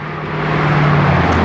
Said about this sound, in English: So much traffic this morning. I hit rush hour just in time.